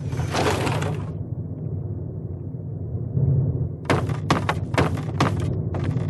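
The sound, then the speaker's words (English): A video game door to the Republic of Dave Capitol Building swings open with a loud, broad burst of noise, then a steady low hum, followed by a quick series of sharp clunks and rattles. No one speaks. “Open door to Republic of Dave Capitol Building.”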